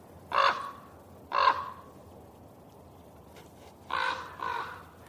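bird, raven calling

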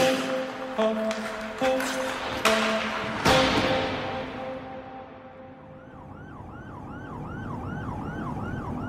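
vehicle, ambulance siren

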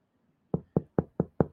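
impact, knocking on a door

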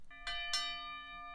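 signal or alarm, timer bell ringing

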